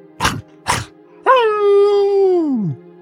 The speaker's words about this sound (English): You now see as the wolves begin to creep in.